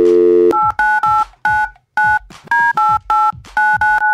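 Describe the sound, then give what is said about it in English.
A steady dial tone gives way to a quick string of touch-tone beeps, about a dozen paired-pitch keypresses in uneven rhythm, loud with short gaps between them, as someone phones the Cheesecake Factory corporate head offices. “So let's get those corporate head offices on the phone.”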